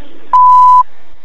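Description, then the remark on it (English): A single clean electronic beep at a steady pitch, lasting about half a second, sounding like a voicemail recording prompt, with faint room noise before and after and no one talking. “Or you can leave a voicemail expressing your displeasure after the tone.”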